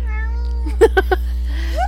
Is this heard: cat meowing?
yes